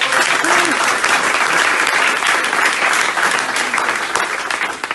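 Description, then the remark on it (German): Loud, sustained applause from an audience, a dense wash of many hands clapping at once that stays steady for several seconds before easing slightly at the end. “Deswegen einmal Applaus für dich, dass du wirklich noch hier bist, das Ganze machen.”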